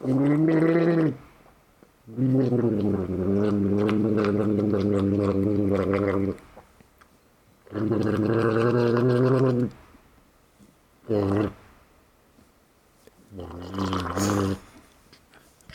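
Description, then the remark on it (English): A voice speaking as a comedic 'water person' makes loud, low, bubbly gurgling noises like water in the throat, in five bursts: a short one, a long drawn-out gurgle, another long one, then two brief ones, with pauses between. “He said all of that in just a few, you know, like gurgles.”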